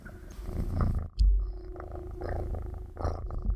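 A cat purrs in a steady, rumbling rhythm that continues throughout, interrupted only by a brief low thump partway through. No one speaks.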